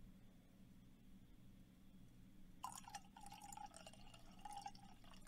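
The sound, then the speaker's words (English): Wine is poured into a glass, a steady gurgling splash with a rising pitch that starts partway through and continues to the end, over a low background hum with no talking. “I made a joke about the wine pour that was good”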